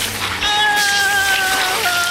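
A steady, dense hiss of rain falls continuously, with thin sustained tones layered over it from about a half second in. No one speaks.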